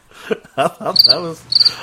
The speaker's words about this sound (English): Can we get some crickets, Dino? Can we get some crickets, please?